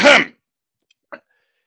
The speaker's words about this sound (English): One man coughs.